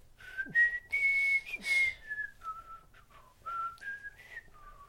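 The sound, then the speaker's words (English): A man whistles a short melodic theme tune as he walks off into the distance, with sustained pitched notes rising and falling in a steady phrase. No talking, just the whistled melody with faint background hum. “And then as he's walking off into the distance, you hear him whistle.”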